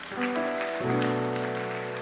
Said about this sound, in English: You ought to just clap your hands to the Lord right now.